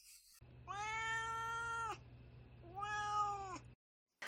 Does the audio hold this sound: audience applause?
no